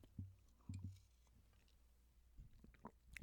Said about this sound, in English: Nice water gulp for the microphone.